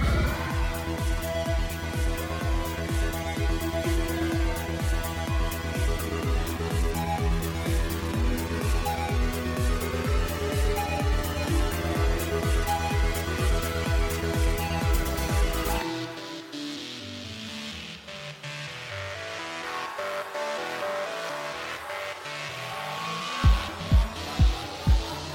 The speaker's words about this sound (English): As you open up the throttle, you hear the roar of overclocked engines as a ground car and two road bikes leap onto the highway behind you.